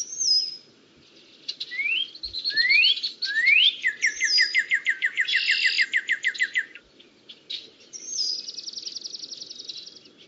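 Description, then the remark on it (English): Forest birds sing in a lively, varied stream of high whistles, quick upward-sweeping notes and a rapid run of bright chirps, over a faint, steady background hum. “Birds, frogs, bugs moving across the leaf litter on the forest floor, trees creaking as they rub against each other in the breeze, the sound of a small stream nearby.”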